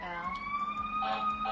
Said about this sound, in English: Oh, it's coming back. It's a fire truck. Oh, here's another emergency vehicle.